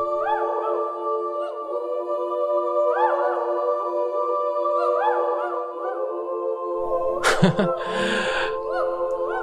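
High, wavering yips and whimpering howls from young wolves overlap continuously, a chorus of thin rising and falling cries with a short louder burst near the end.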